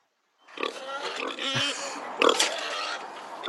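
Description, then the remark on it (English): A pig on a farm grunts and snorts continuously, a steady run of rough, nasal noises with a louder squealing burst near the end, no one speaking over it. “I remember the pig vividly.”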